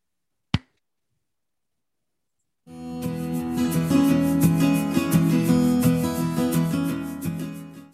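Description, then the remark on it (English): A single sharp hand clap rings out, followed by about two seconds of silence before a steady, full-bodied music track fades in and plays on. “Put a little bit of silence in here to edit this, clap us in, transition back in, and wrap this episode up with a conspiracy theory.”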